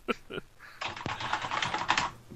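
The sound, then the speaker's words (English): Rapid clicking of keys on a computer keyboard as someone types a post, a dense run of crisp taps after a couple of brief sounds at the start. “I'm typing my post in right now.”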